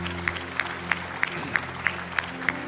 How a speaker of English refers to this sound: Come on, let's give God a round of applause today.